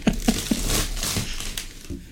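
A cardboard box marked Prime is pried open with the fingers: three quick thumps at the start, then steady scratchy crinkling and tearing with a few sharper rips, fairly loud and with no voices.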